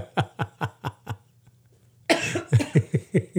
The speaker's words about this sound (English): I'm all congested and you're still coughing.